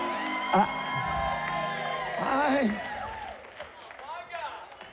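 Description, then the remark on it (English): An audience erupts in overlapping shouts and whoops during a sermon, several voices rising and falling together, with a burst of cheering that tapers off into scattered calls. “I thought this sanctified bunch over here shouted at that.”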